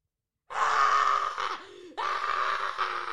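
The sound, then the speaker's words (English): A person imitates a dog's shrill, strained scream with their voice: a loud, raspy cry, a brief catch of breath, then a second drawn-out wail that runs to the end. “And then middle of the consultation, a dog in the other room starts, I'm not shitting you, screaming.”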